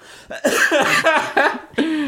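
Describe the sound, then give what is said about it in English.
A run of harsh, raspy coughs and throat clearing, several bursts in quick succession, loud, with short gaps between them and no talking. “Okay, I still cough a lot.”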